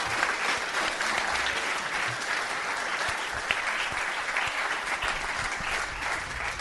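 A sustained round of applause from a crowd, dense clapping that holds steady and loud for several seconds without any voices breaking through.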